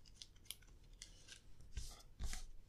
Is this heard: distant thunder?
no